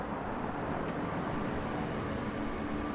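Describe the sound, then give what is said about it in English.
An old Dodge Dart rolls slowly down a driveway, its steady low engine rumble and tire noise filling the background with a continuous, even drone and no voices. “Suddenly, there's a car coming down the driveway.”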